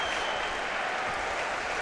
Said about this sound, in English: As Tavares is getting a good round of applause, he looks really upset as well.